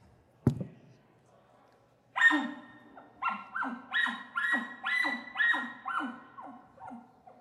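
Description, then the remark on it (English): A single sharp elk bark blown on a game call, followed by a rapid rhythmic string of about eight throaty, descending chuckle notes, loud with no talking. “if you can challenge them back with a bark, you're saying, no, you come to me”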